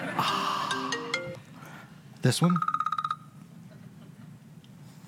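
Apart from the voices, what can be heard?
phone notification ringtone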